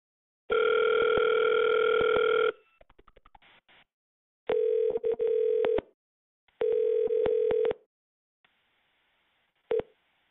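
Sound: telephone line ringing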